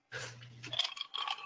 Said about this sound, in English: I can hear your ice cubes over there. Is that vodka, or what are you drinking tonight? Vodka and cranberry, yeah.